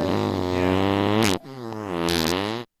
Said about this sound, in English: Wow. You should do a real fart on her.